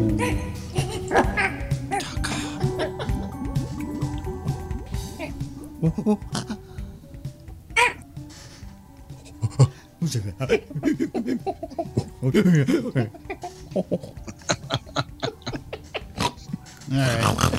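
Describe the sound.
A person mimics monkey chatter and pig-like oinks and grunts in a rapid, playful string of vocal noises, with bursts of laughter mixed in.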